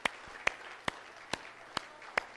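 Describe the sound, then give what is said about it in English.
Hands clap to honor military veterans standing in an audience, in a steady, even rhythm, six sharp claps in just over two seconds over a faint low hum, with no voices. “Let's give these men a hand clap.”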